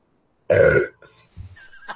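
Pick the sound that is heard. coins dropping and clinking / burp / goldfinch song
burp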